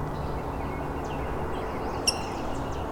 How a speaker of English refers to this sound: All these little squeaks, that's the rose-breasted grosbeak as well.